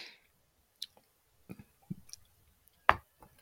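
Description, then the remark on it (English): A quiet sip of extra añejo tequila, aged at least 7 years in American white oak and finished in cognac barrels, followed by wet lip smacks and tongue clicks as it is tasted, a few scattered mouth sounds with one sharper click near the end, no talking. “You see me taking a sip.”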